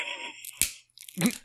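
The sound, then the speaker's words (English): Pencils are snapped, as Herbert does during the examination process: a pencil snaps with a sharp, dry crack, followed a moment later by a second splintering crunch. A faint high-pitched tone fades out before the first break. “I think that is just incredibly humorous, especially even when, you know, Herbert is snapping the pencils during the examination process.”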